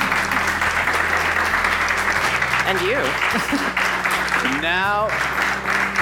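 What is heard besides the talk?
audience applause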